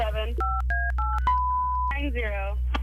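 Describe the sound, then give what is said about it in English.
A quick run of three or four telephone keypad beeps while dialing a phone number, each a short two-note tone, followed by a longer steady tone, with a voice talking just before and right after. “What's his phone number?”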